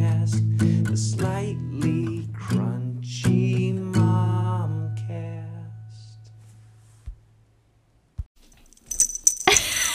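A small bell on a cat's collar jingles in a quick, bright burst of tinkling metallic rattles near the end, after a stretch of ringing musical tones fades out and a couple of soft taps.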